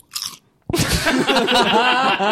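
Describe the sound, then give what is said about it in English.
A brief crinkle, then a loud, sharp potato-chip crunch that turns into steady, noisy chewing for about two seconds, with no talking. “You just unlocked a new way to like punctuate sentences with a chip crunch.”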